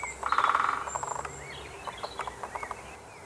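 A great spotted woodpecker drums a quick, rattling burst with its beak on hollow wood, followed by a few scattered taps and high bird chirps.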